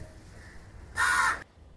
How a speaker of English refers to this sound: So yes, please ignore that. Yes, please ignore the crows.